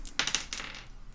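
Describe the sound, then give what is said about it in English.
A die clatters across a hard tabletop in a quick burst of bright, rattling clicks, bouncing a few times before settling, with no voices over it. “That's not the right die.”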